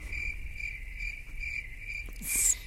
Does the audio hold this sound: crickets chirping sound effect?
yes